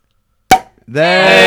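A single sharp, loud pop as a beer bottle is opened, followed after a brief pause by a person beginning to speak.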